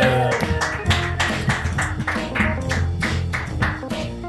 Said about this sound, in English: Ladies and gentlemen, round of applause for Toby Nelson.